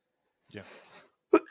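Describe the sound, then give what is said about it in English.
A person coughs twice with no talking: first a raspy, breathy cough lasting about half a second, then after a short pause a sharper, abrupt cough that starts loud. “I'm starting to cough, so.”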